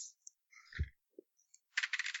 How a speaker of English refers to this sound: Oh, dice like me tonight. That's a 12.